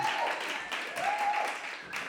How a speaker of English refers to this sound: Keep the applause going. Fantastic.